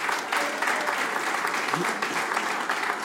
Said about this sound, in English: And I think exactly, he needs I think he needs nearly a round of applause for that.